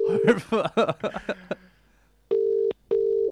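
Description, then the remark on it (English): Brief talking gives way to two steady, loud telephone dialing tones as a guest is dialed in by phone, each tone lasting about half a second with a short gap between them, heard clearly on their own. “So we're going to dial him in now to get his opinion on what's going on.”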